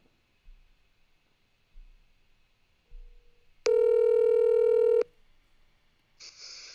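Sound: telephone dial tone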